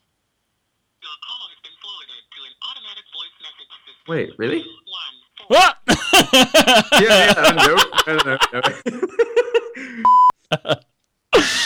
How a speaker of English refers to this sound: It really... does it sound like that? There's nothing happening. Ooh. I'm making overseas phone call. Horrible noise.